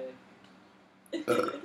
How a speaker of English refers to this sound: Were they good burps? I'm kind of like they're a gaseous guy.